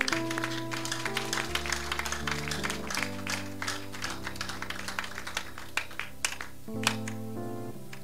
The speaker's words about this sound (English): Let's give ourselves a clap for now.